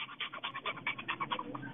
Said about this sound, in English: Oh, man. Is that a dog? What was that? Let's try to find out. Was that a panting dog?